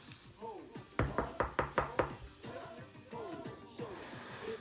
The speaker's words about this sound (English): Knock on wood. Or knock on... Here. That's the wood.